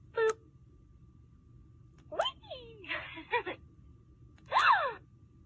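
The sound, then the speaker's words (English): Several short, breathy gasping and sighing noises from a toy doll's voice, made when a button on the doll's lower body is pushed, spaced irregularly with quiet pauses between, the last one a bit louder and drawn out. “Like a gasping sound.”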